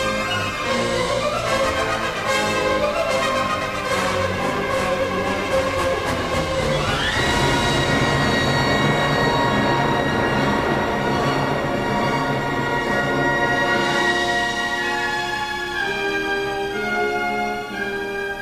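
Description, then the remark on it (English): A full orchestra plays loudly, then sweeps sharply upward into a piercing, sustained high chord, the so-called Mahler death shriek from one of Mahler's symphonies, a shrieking symphonic gesture that holds with dense harmony for the rest of the passage. “That's the so-called Mahler death shriek that appears in this symphony a couple times.”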